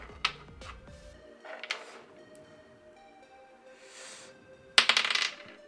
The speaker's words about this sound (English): I'm gonna just roll a d12.